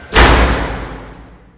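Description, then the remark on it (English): A heavy door, the door to the east, swings open and lands with a single loud, booming thud, its deep echo slowly fading away. No voices accompany it. “You have chosen the door to the east.”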